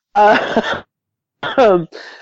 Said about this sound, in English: sorry, pardon me. Little bit of a cough there.